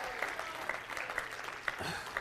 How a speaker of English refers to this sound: Somebody clap your hands and shout yes!